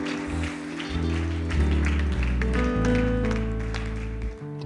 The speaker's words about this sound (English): Come on, clap your hands. Say, oh, God, help me. I challenge everybody in this building right now. Come on, clap your hands and say, God, help me right now.